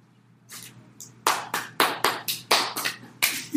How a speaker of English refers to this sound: Is that something to clap for?